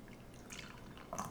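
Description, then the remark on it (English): Caramel-coloured beer trickles from a can in a soft, steady pour, with small splashes and drips popping through near the end. It is fairly quiet, and no one speaks. “Now, this is a beautiful caramel color coming out of that can.”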